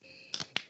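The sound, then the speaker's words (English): Three sharp, bright hand claps, two in quick succession and then a third after a short pause, with no talking and a faint high steady tone in the background. “I got the clap and everything.”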